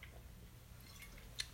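Quiet sipping of a drink: soft wet mouth and liquid sounds over a low background hum, ending in a small sharp click near the end, with no talking.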